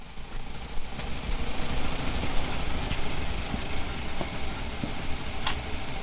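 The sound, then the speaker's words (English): An old Farmall Model A farm tractor engine runs steadily on a farm, recorded on an iPhone: a continuous rough, chugging rumble with faint periodic clicks throughout, and no voices. “Casey said he had an old Farmall Model A on his farm and would be happy to record it for me.”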